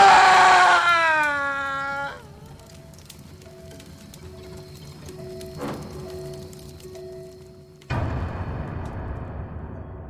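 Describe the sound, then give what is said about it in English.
A person screams to scare listeners at the end of a scary story: a loud, high-pitched scream rings out for about two seconds, sliding downward in pitch before cutting off, followed by quiet faint tones and then a burst of rustling noise. “And the book says, turn to your friends and scream.”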